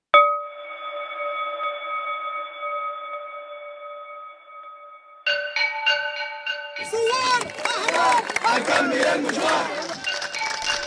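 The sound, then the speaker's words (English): A long, steady high-pitched tone holds for about five seconds, then a large protest crowd in Sudan erupts in loud, rhythmic shouting and chanting of slogans, including "Peaceful, peaceful", that keeps building to the end. “Familiar slogans from the Arab Spring are now echoing across Sudan. Peaceful, peaceful, they cry, their hands raised and empty of weapons.”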